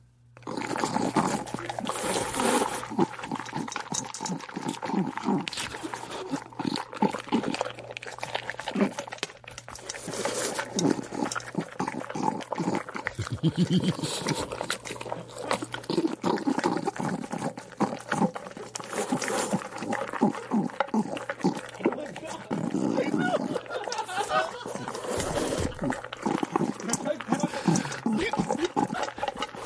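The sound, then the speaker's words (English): A female dog eats dog food mixed with a little spaghetti, noisily for about half a minute, with steady wet smacking, slurping and chomping, broken by occasional louder snorts and gulps. “dog food, she enjoys it, but I put a little spaghetti in there because I knew she would just love it.”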